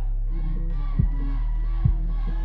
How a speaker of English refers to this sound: You gotta take that to the head right now for everybody in here. Y'all cheer on, y'all. Come on.